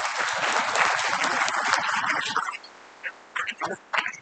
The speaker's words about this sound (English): And just give them a round of applause, too, since we're in class.